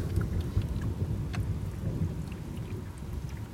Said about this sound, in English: Thunder and rain after a beautiful time in sunny autumn Montreal. It is just miserable, rainy, stormy weather here.